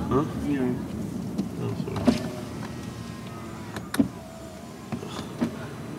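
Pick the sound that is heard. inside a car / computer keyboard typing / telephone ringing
inside a car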